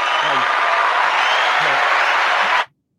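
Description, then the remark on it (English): Steady clapping from a small group fills the room with a dense, even patter for a couple of seconds, then stops abruptly into silence. “I never get applause at home, so thank you.”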